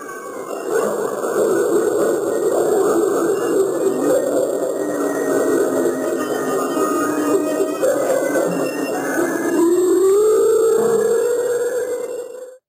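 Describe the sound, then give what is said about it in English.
An eerie ghost-voice recording, a U.S. psychological-warfare tape meant to frighten Viet Cong soldiers, of low, warbling moans and wails that drone continuously and loudly, ending in a long, rising, sustained wail. “As you patrol your route, you hear this, coming from seemingly every direction.”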